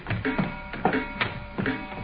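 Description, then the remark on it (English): Wooden stairs creak and squeak under slow footsteps, four or five strained groans in a steady, uneven rhythm, moderately loud with no voices. “I wish these stairs didn't squeak so.”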